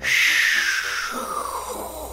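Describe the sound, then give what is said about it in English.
A voice makes a rushing, hissing rocket-launch sound, pretending a spaceship is blasting off into space: a steady breathy roar with a whistling tone that slowly glides downward in pitch over about two seconds. “No, I'm not flushing my toilet, Rufus. That was my wicked, cool rocket noise.”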